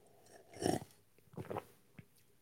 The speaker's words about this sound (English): Oh, we're there. Sip of the day. That was the sip of the day. That was good.